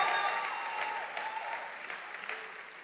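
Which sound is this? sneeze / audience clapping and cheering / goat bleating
audience clapping and cheering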